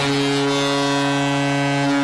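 A single loud, sustained horn blast holds one low, steady pitch for about two seconds, with a rich, buzzy tone like a ship's horn. No one speaks over it.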